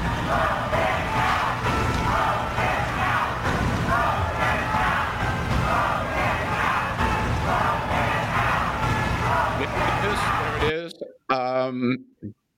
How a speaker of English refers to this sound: The crowd shouting, vote him out, vote him out